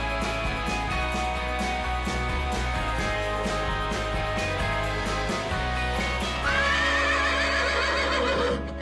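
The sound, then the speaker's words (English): A loud horse whinny, played in the opening of the Horse Talk Show on Florida Sports Talk, rises and wavers near the end, ringing out over a steady bed of music that plays throughout. “You never heard of a talking horse? Well, listen to this.”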